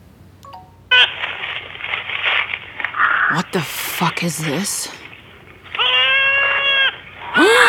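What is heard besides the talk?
goat bleating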